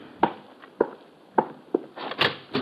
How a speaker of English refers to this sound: It's almost 11 that night when there's a rap on my door.